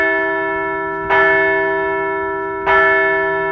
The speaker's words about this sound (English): Let's ring the bell for the seventh straight road win.